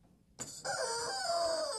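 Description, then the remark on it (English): A chicken lets out a sudden, loud squawk that rolls straight into one long, strained crowing call, clear with no talking over it. “I fucking hate this chicken.”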